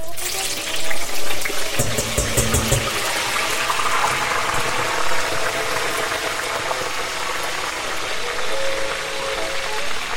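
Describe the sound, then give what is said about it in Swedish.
Eggplant pieces deep-frying in hot oil on full heat (the oil dropped from 180 to 130 degrees when they went in), a steady hiss of bubbling and sizzling with scattered crackles and pops, louder and busier in the first few seconds, continuing throughout. “Så att full spett på det här nu så det hinner fritera verkligen.”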